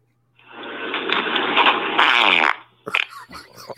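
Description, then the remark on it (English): A long, loud, rumbling fart lasting about two seconds, buzzy and sputtering with a slight rise near the end, followed by brief voices and movement. “when you hear that, it's like saying, hey, what's up? That's my ass saying”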